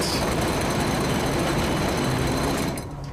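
A loud, continuous mechanical rattling and shuddering comes from the center of a house as dust falls from the ceiling. It is dense and rough across the whole range, with a steady grinding texture that cuts off abruptly near the end, leaving a quieter rumble.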